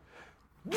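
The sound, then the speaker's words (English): A sudden, loud sneeze bursts out after a moment of near silence, a single sharp, breathy blast at the very end. “Sorry. Bless you.”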